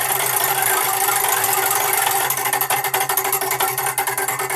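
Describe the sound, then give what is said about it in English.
A joke-category prize wheel whirs in a steady, loud rattle, then its clicks separate into distinct ticks that gradually slow as it winds down, landing on dad jokes. No one speaks. “Spin the wheel.”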